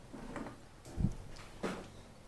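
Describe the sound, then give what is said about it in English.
Quiet wooden creaking of a turning windmill, a few drawn-out groans with a dull knock in the middle, with no voices. “You can still hear the creak of the windmill turning.”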